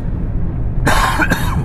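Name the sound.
coughing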